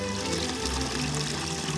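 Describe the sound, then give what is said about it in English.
Water pours and splashes steadily in the water garden at Curtin Manor Gardens in Northamptonshire, a garden laid out on a gradient, with a continuous rushing flow, no pauses and no voices. “We're in the water garden here, as you may have heard”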